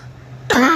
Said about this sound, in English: Excuse me. Sorry for the coughing fit, everybody.